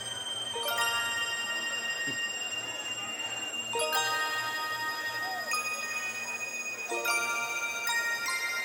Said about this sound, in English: Here's the alarm.